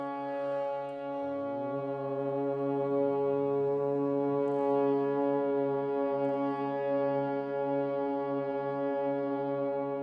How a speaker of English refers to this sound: So we'll start just by humming. Take a deep breath in and then hum this note. Breath in. Try to feel that humming in the center of your chest or in your forehead.